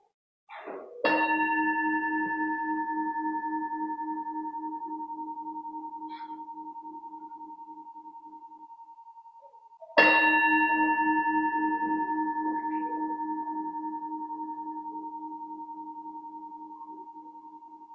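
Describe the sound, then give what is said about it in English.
A bell is struck twice, about nine seconds apart, as a Unitarian Universalist audience prepares to worship. Each strike gives a clear, resonant tone with bright overtones that rings on and slowly fades, with no talking. “So as we prepare to worship together, will you all please settle in comfortably, take a deep breath, and hear the ringing of the bell.”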